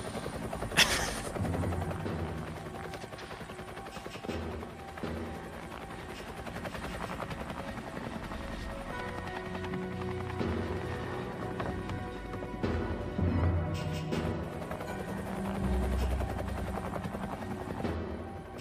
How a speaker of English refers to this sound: No, so, I was just gonna say, is that a news helicopter?